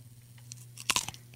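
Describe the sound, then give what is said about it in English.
A single loud crunchy bite into a raw carrot, a sharp crackling snap followed by a few brief crunching fragments, over a low steady hum. “That's the tried and true carrot right That's there.”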